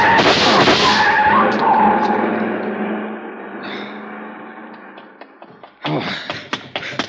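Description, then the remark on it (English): A long black coupe with a lot of chrome, its lights off, roars off loudly with a brief tire squeal, its engine noise steadily fading over several seconds, followed by a few sharp knocks and clicks. “See the car. The one that just gunned out.”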